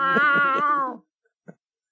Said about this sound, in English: All those stray cats over there. Someone got a fish?